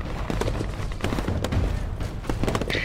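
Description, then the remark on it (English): Sharp gunshots crack out from all directions at once, irregular and overlapping, as people shoot at others in a crowd, over a dense, loud wash of chaotic background noise. “Gunshots came from all directions.”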